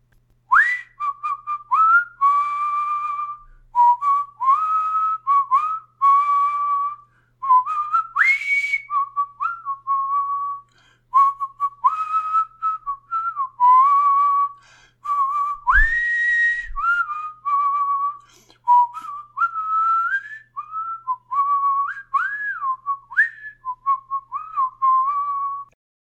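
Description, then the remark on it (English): A person whistles a pop song melody alone, clear, in a steady run of short phrases with brief pauses between them for about twenty-five seconds. “So the song, as I attempted to whistle, is …”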